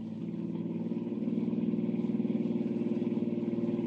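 A car engine roars steadily, building in loudness with a rapid rhythmic throb as it races along at speed chasing another car, continuous with no voices.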